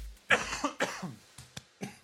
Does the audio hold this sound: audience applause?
no